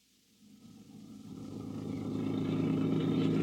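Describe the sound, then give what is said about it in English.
A car engine starts low and steadily builds, its droning hum growing louder and rougher as the vehicle pulls away and accelerates, with no voices. “Horace, come on, stop loafing. I want to get as far away from Brightwood Hospital as I can.”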